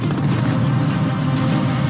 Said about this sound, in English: I'm going to play you next the one from China. If we can go cut two. Go. Explosions. Fire. Bullets. Tanks. Jets.